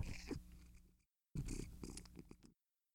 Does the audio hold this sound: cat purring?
yes